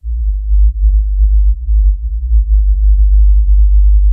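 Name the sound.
whale call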